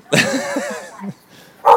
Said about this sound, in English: Your dog. Why is your dog barking? Because the wind blew.